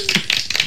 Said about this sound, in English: you and your clapping, man. I know. That's funny.